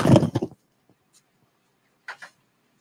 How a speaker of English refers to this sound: Oh, shit. I got to close the door. Hold on.